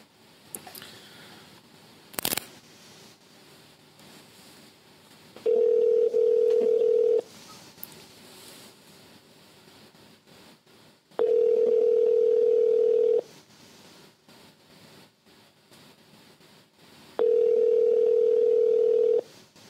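An outgoing prank phone call to the caller's mother rings with no answer: three steady, loud ringback tones about two seconds long, evenly spaced with quiet gaps, and a brief click near the start.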